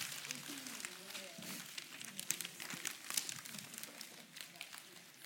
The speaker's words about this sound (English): Everybody needs a piece of paper, and I need you to wad up the piece of paper, okay?